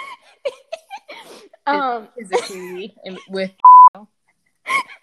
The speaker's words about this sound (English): Just like beep the word out?